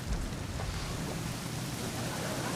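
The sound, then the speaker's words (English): Steady rain hisses continuously with a low rumbling undertone, a dense wash of noise that stays even throughout, moderately loud, with no voices. “Oh, and then it started raining.”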